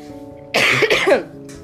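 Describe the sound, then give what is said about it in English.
A person who is sick coughs and clears their throat, two rough, harsh bursts in quick succession followed by a faint trailing rasp, with no talking. “Sorry about my coughing.”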